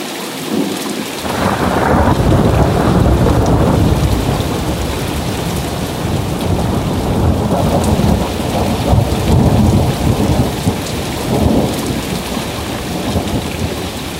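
rain with thunder

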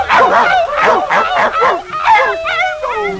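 poodle barking

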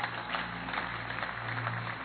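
audience clapping

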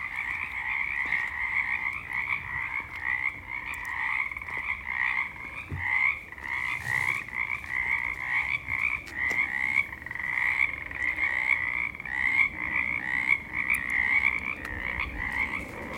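chorus of croaking frogs

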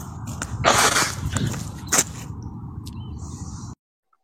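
birds calling outdoors

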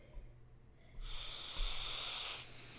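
sniffing wine

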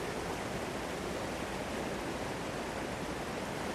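river water flowing

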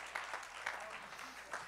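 audience clapping hands

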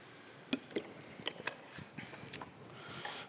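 sipping water

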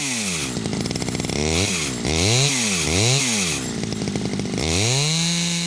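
chainsaw running

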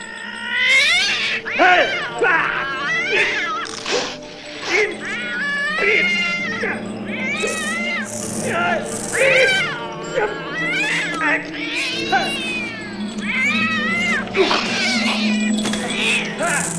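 cat yowling

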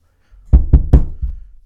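knocking on a door

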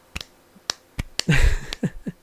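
slow hand clapping

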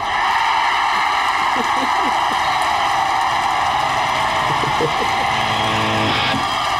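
concert crowd cheering

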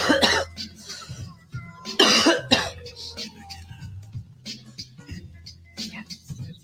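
coughing and throat clearing

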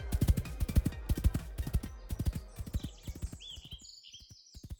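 horse hooves clip-clopping

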